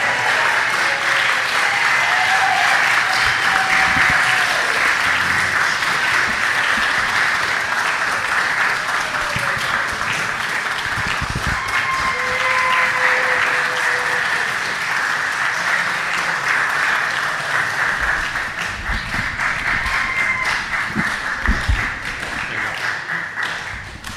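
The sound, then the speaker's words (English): A crowd applauds steadily for over twenty seconds, a dense, even wash of clapping that stays loud throughout, with a few faint whistles or whoops riding above it. “You guys are so good about keeping that clap going.”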